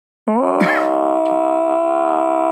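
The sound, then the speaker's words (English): A man's voice loudly imitates a Tarzan-style death yell of a character stabbed by the Predator in the film: one sustained, full-throated roar that bursts in after a moment of silence, swells slightly in pitch and holds steady without a break. “it's a very like Tarzan-esque right. roar, you know, right. filling the jungle. Very much a death yell, right?”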